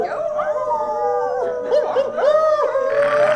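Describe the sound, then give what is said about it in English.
Coyotes or wolves howling in a continuous chorus, with long wavering wails that rise and fall, broken by a few short yips, fairly loud with no talking. “Now's about the time the coyotes and the wolves and the ultra-intelligent mountain lions start coming out.”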